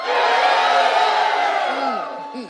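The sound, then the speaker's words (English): A large audience lets out a loud, sustained collective scream as a battle cry on a count of three, a dense wall of many voices holding for about two seconds before trailing off into scattered whoops and shouts. “All right, I want to hear your battle cry on the count of three.”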